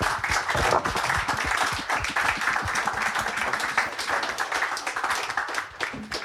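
A crowd applauds steadily, many hands clapping in a dense, even wash of sound that holds strong throughout before tapering slightly at the end.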